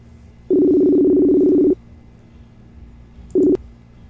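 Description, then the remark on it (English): An outgoing video call's ringback tone as a host calls a guest to join a live stream: a steady, buzzy electronic tone lasting just over a second, a pause, then the clipped start of the next ring. No one speaks. “We're ringing.”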